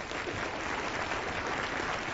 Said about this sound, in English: Well, I'm glad you're clapping, but what I want to know is, are you memorizing scripture? The clapping won't change your life.